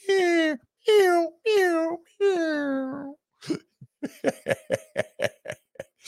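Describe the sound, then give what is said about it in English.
A voice mimics a mournful, electronic-sounding cat crying with four drawn-out, descending wails, followed by a quick series of short, choppy sobbing or sniffling bursts, all fairly loud. “Electronic cat crying.”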